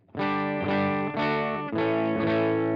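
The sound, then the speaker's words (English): An electric guitar with its volume knob rolled back gives a cleaner, lightly overdriven tone, strumming a handful of ringing chords in a steady rhythm, each sustained and full until the next, with no one talking. “so if I roll the volume knob back, I can get a little bit of a cleaner sound.”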